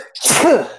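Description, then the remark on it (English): A single sharp, fairly loud sneeze, with a quick breathy intake and an explosive burst that tails off into a short voiced trailing sound. “Bless you.”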